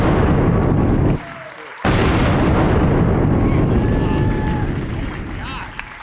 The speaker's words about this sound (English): Double cannon, please.